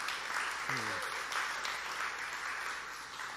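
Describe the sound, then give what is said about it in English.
An audience at a worship gathering breaks into steady, dense applause celebrating baptisms, lasting the whole stretch, with a short voiced whoop rising briefly over the clapping near the start. “And we can give a round of applause right now for that.”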